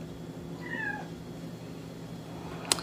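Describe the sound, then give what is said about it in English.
A cat on the counter gives a single short meow that bends downward in pitch, heard alone over a faint steady room hum, followed a moment later by a sharp click. “Cats.”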